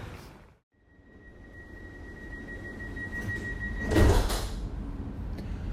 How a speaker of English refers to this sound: Sydney has a smart new tram system, and I'm on the L3, departing from Circular Quay, which is where all the harbour ferries come in, and it goes straight through the centre of the city.